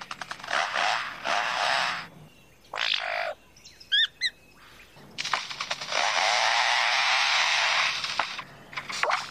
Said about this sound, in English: And now the sounds of foresters and their chainsaws working nearby.